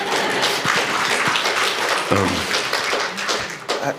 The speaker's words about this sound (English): It's okay. Clap. That makes me feel good.